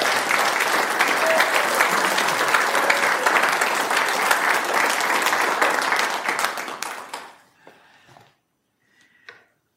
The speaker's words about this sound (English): How about a round of applause for us?